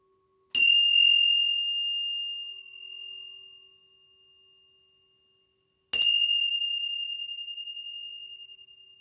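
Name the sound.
tibetan tingsha bells ringing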